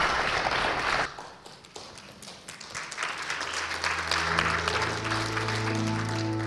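An audience applauds a person's testimony in a dense, steady wash of clapping that lasts throughout, joined in the second half by sustained low musical tones beneath the clapping.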